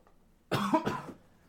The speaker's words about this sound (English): Damn it. Oh, coughs are so annoying. And it always gets worse when I pull the microphone out. I don't know why. It's like Pavlonian.